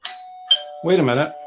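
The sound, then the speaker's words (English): A doorbell chimes twice in quick succession as someone arrives at the door, two bright ringing tones that linger and hum, then a person's voice starts speaking over the fading ring. “Wait a minute. There's somebody at the door.”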